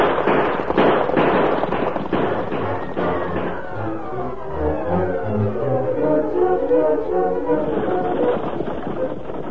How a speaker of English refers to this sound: Inside the stagecoach, Ebenezer was startled when the gunfire was heard.